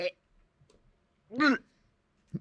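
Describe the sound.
A single short, strained gagging retch, throaty and voiced, rising and falling in pitch, with brief quieter throat noises before and a small catch of breath after.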